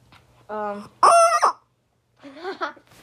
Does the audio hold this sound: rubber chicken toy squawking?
yes